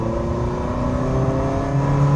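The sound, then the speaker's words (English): A Ferrari Mondial T engine drones steadily and climbs in pitch as it revs up after a gearshift, a continuous mechanical hum building toward the end with no voices present. “TestDrive: Ferrari Mondial T”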